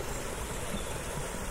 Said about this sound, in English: Here's a lovely little kind of mini weir, sort of fountain. I love that sound of pouring water.